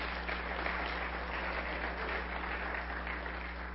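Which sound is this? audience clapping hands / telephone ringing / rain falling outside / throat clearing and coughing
audience clapping hands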